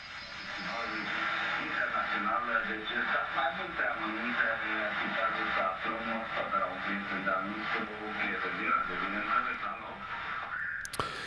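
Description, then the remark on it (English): Garbled radio interference: warbling, distorted tones and smeared, unintelligible voice-like chatter hold at a steady, fairly loud level for about eleven seconds, then cut off with a sharp click. “And of course, we got some interference from foreign sources, possibly Russian, when I'm reading the news here.”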